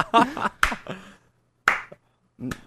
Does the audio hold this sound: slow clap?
yes